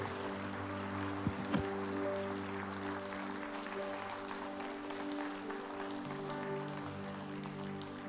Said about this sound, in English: And everyone said, can we give God a huge hand clap of praise in the house?